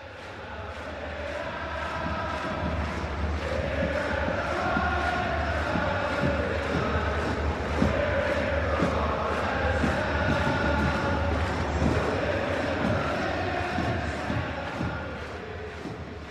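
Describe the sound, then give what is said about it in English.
A large stadium crowd at an MLS soccer match between RSL and the New York Red Bulls sings a sustained, droning chant at steady volume, with a faint rhythmic pulse running underneath the massed voices throughout. “Crowd singing, RSL now firmly in charge against the Red Bulls.”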